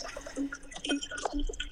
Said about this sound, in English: What are you pouring? Agua. Nice.